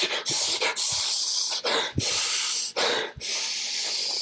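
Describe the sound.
A voice imitates the forced, strained breathing of a man holding on to his seat as hard as he can while trying to calm down: a run of loud, hissy exhales pushed through the teeth, broken by short catches of breath, with no words spoken.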